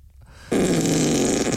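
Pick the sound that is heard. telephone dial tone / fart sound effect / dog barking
fart sound effect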